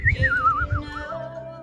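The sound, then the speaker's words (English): A person whistles a short, wavering tune in an old man style, the pitch sliding and wobbling up and down, moderately loud with some low rumbling underneath. “I could do that old man whistle.”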